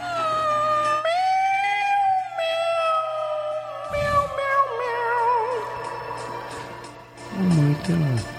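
A cat meows in one long, drawn-out wavering yowl that holds steady and loud, broken by a short scratchy burst midway and ending in a few higher, rising cries.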